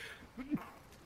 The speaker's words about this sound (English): And sneeze. And sneeze. This is a very sneezy game tonight.